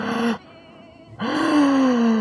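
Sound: surprised gasp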